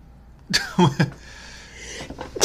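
A person sneezes, a sharp breathy burst with a couple of voiced catches after it, followed by a short lull and another brief explosive burst at the end.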